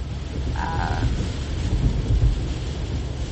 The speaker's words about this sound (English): Yeah, it's raining hard now. And it's, like, continuous raining hard. But it's not as bad as it was earlier, so I guess that's good.